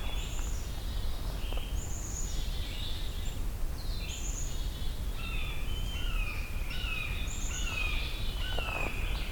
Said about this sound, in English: Red-shouldered hawk.